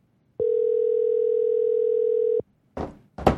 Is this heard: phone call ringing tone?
yes